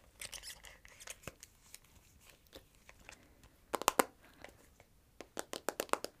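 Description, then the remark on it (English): A phone pop socket clicks and snaps in irregular bursts of sharp, crisp taps, with a louder cluster midway and a quick run of clicks at the end. No one speaks. “or, like, my phone is making weird noises. Like, I have a pop socket, and it's, like...”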